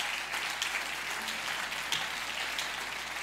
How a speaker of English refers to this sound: Oh, clap your hands and praise him for a moment.